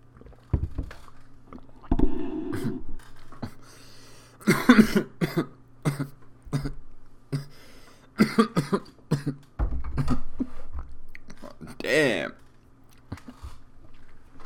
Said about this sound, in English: Damn. Coughing up a little storm here like a soldier. Sorry about that, ladies and gentlemen.